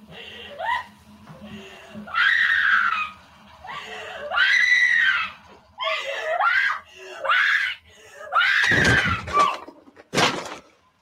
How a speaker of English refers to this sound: And again, for me, the last 5 minutes were scary as hell. Like with her scream, I think I've got the, I brought the scream to the show. Okay. If I can find it.